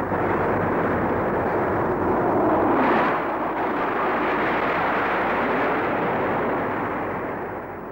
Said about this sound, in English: Derby is the home of Rolls-Royce, famous for its silent cars, now equally famous for its not-so-silent aero engine.